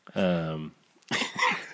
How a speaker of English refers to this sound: I've mostly been not coughing until these voicemails, and then they just send me over the edge, like that secondhand high.